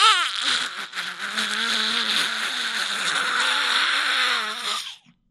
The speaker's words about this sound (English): What, did you just sit on a duck? Clearing my throat. Oh. With a duck?